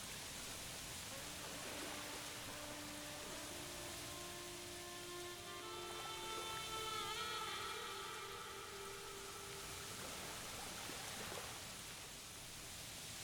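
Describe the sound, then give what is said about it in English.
A steady, hissing wash of water like small waves lapping on a beach, fairly even in level, with a faint wavering tonal hum drifting through the middle stretch. “The sound of the waves lapping on the beach.”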